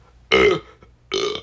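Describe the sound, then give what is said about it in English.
Two loud, throaty burps in a row from a person drinking water, the first short and forceful, the second a bit longer and rougher, separated by a brief quiet pause. No talking. “Oh, excuse me. I'm drinking water, and you know, water makes people gassy.”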